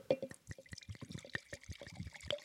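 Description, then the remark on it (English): Cab Franc wine glugs steadily from a bottle into a glass, a bubbly pour with rhythmic gurgles and splashes over a couple of seconds. “Pour. Let's listen to the pour.”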